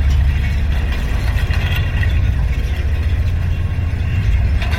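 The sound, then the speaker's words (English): On a very windy day, wind-driven grass stalks rub against the lower strand of a wire fence, producing a steady, deep droning hum with a faint scratchy, fluttering texture on top. It stays loud and continuous throughout, with no voices. “The wind was blowing these stalks of grass against the lower strand of the wire fence.”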